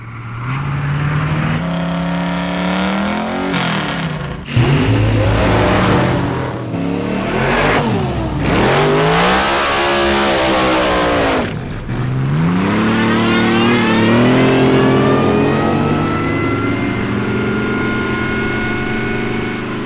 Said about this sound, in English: This is Han's car in Fast and Furious 4. What the production car was a 1967 Chevy C10, but it had pipes up the side of it, like a diesel.